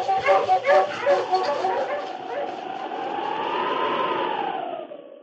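A husky named King, urged on to find them, lets out a rapid burst of sharp, high barks and yips, then slides into a long, wavering whimper that rises and falls in pitch before fading out.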